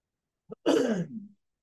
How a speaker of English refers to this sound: Okay. Clearing my throat again. Here we go.